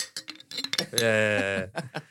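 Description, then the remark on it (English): Glasses clink together in a toast: a quick flurry of bright taps and chimes, followed by a brief sustained vocal sound and a few more light clinks. “Let's cheers.”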